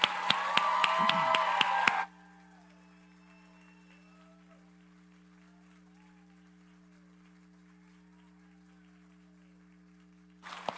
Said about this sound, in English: I want you to give your team a big round of applause for the way they love you and serve you and love Jesus.